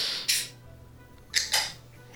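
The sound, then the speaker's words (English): A beer can being cracked open: a short, sharp hiss of escaping gas, then after a pause two more quick fizzing bursts in succession, with no talking. “Right, hang on, yeah, let me get mine open.”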